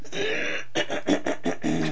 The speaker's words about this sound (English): That was a clip, not me. I mean, that wasn't live me clearing my throat.